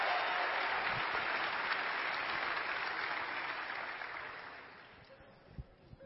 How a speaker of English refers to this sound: All right, another round of applause, especially Fellowship Center. Give it up for this man.